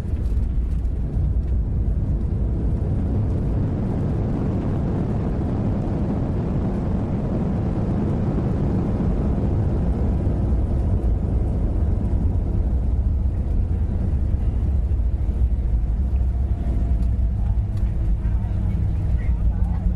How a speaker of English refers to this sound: Now, here is what the landing sounds like. Once we touch down, you'll hear the jet engines spool up again, but this time with thrust reversers. That helps to slow the aircraft down along with the brakes.